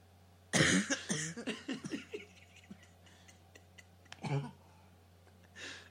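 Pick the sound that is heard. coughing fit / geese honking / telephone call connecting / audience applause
coughing fit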